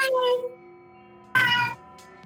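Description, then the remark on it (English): A person imitates a cat's meow twice, a softer drawn-out mew and then a louder, sharper one after a short pause, with no other talking. “I think there's a cat inside.”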